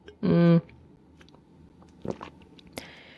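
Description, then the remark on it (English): A short voiced hum, then quiet mouth sounds: a soft sip and swallow, with a couple of small clicks near the end, as someone drinks a sip of water. “I need to have a sip of water.”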